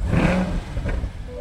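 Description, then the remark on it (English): A 2021 Chevy Corvette convertible engine revs with a loud throaty roar, then settles into a steady rumbling idle, with no voices present, at a park on a hill overlooking the Pacific Ocean in Orange County, California. “I met him in Orange County, California, at a park on a hill overlooking the Pacific Ocean, where he was very excited to show me his current loaner, the 2021 Chevy Corvette convertible.”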